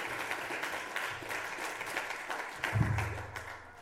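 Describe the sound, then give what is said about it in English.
A crowd applauds the garden committee and others at a community gathering, a dense wash of many hands clapping steadily at moderate loudness, with a low murmur of voices underneath that swells slightly near the end. “So let's have a round of applause for everyone.”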